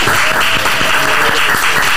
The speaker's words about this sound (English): You give him a round of applause, man.